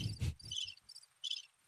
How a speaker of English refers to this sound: Crickets.